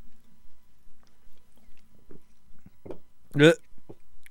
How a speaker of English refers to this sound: I got a burp. I'm sorry.